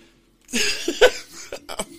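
A fairly loud fit of coughing: one harsh, rough cough followed by a few shorter coughs in quick succession, with no talking.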